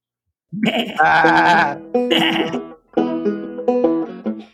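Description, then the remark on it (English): A sheep bleats loudly, several wavering, drawn-out cries in a row with brief pauses between them, no talking over it. “This puts, I feel like this puts the parable of the lost sheep in a whole new light.”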